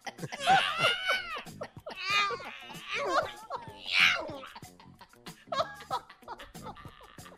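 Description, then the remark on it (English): A man lets out several loud, strained, high-pitched yowls, imitating an injured cat, in rising and falling bursts, followed by softer laughter and chatter. “When he's done, he yells like an injured cat.”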